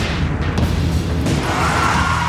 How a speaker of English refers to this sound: You hear crack, crack, crack, gunfire. The terror, the bullets.